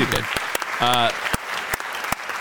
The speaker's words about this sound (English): you clapped pretty hard there. Could you hear me clap? That was a slow clap. What was that? Were you standing up trying to start a slow clap?